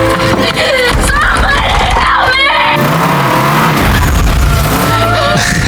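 A truck's engine roars loudly and continuously, with whining tire squeals and skidding noises layered over a dense, chaotic background throughout. It is from the family death scene of the 2004 film The Punisher, where a truck driven by Howard Saint's son slowly creeps up.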